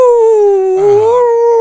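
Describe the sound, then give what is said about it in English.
A person imitates a werewolf's howl: one loud, sustained wavering tone, dipping slightly in pitch and rising again, with a rougher growly edge midway through. “No, that was my werewolf howl.”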